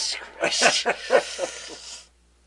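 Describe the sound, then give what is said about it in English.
A cat hisses and spits in a rapid series of harsh, breathy bursts, fairly loud, for about two seconds before falling silent, as it attacks behind the scenes. “The cat of the Baskervilles is attacking us behind the scenes here.”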